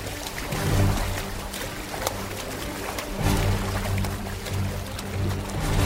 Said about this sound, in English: The splashing's coming from over there now.